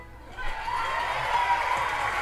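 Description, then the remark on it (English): Steady audience applause in a recorded show, a dense wash of many hands clapping that swells after a moment and holds at an even, moderately loud level throughout, with no voices standing out. “I think it's kind of almost like a forced clapping though.”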